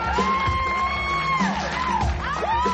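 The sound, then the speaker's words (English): A group cheering loudly and continuously, with overlapping whoops and high-pitched yells rising and falling over a steady roar of crowd noise. “The last scene of the Hair War episode has Luann Johnson on stage in the strip club, modeling a big outrageous hairdo as her students cheer.”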